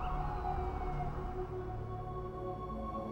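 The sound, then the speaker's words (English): City street traffic rumbles steadily with a low, continuous drone on a chilly evening while a siren wails over it, its tone sliding gradually. The noise stays fairly loud and even throughout, with no voices. “They stroll through the chill evening to a soundtrack of traffic.”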